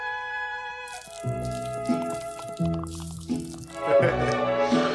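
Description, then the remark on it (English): Liquor glugs out of a 40 bottle in several uneven pulses, splashing and dripping, while tonal music plays steadily underneath. “I'll just pour the 40 now for it.”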